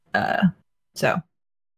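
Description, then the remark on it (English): Two harsh, throaty coughs, a longer one followed by a shorter one after a brief pause, as if someone is choking on water that went down the wrong way. “Are you coughing over your journey?”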